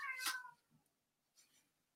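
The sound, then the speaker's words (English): A cat gives one clear, drawn-out meow that slides downward in pitch, followed a moment later by a fainter, shorter second cry. No one speaks over it. “Is there a cat anywhere?”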